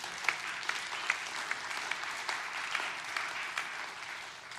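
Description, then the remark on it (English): An audience gives God a praise clap, clapping steadily, a dense wash of many hands with a few sharper, louder claps popping out now and then, sustained through the whole stretch with no talking. “Can we give God a praise clap on that?”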